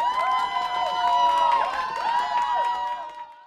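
A crowd applauds and cheers steadily, with dense clapping under rising and falling whoops and shouts, fading out at the end.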